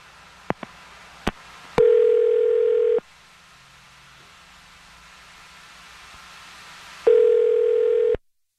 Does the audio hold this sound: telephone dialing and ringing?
yes